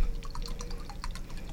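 A canned drink that looks like lemonade pours into a glass, a quiet, steady stream broken by bubbly, splashing trickles and drips, with no voices.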